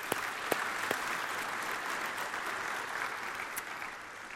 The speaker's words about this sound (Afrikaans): Kom ons gee die matriek se lekker hande klap.